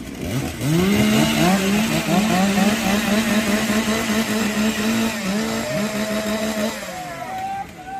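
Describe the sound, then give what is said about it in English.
Several chainsaws being warmed up by men before a lumberjack competition event rev loudly and continuously, their buzzing pitch swooping up and holding high, the overlapping motors droning together for the whole stretch, with no voices heard. “All right, we're going to give the men a moment to warm up these chainsaws.”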